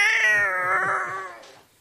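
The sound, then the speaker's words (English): A cat lets out a loud, drawn-out yowl lasting nearly two seconds, its wavering pitch sustained before fading away at the end. No speech accompanies it. “Yeah, now I can see a cat.”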